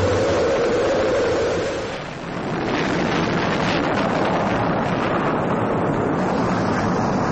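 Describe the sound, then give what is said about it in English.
A rocket engine roars at main engine start after a countdown, with a dense, continuous rush of noise, loud and steady for several seconds, with a brief low hum fading early on and no voices. “We've gone for main engine start. We have main engine start.”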